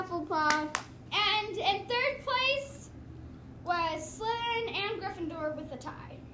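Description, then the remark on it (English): Children cheer in high-pitched, excited bursts of shouting, with scattered hand claps mixed in, applauding Ravenclaw as the winner of the house cup. Two loud waves of cheering are separated by a brief lull. “So, Ravenclaws, give yourself a round of applause.”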